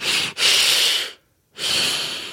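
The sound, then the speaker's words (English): Heavy, breathy rushes of air: a long, deep breath with a brief catch, a short pause, then another long breath, as someone demonstrates breathing deeply into a brown paper bag. “You get a brown paper bag and you go...”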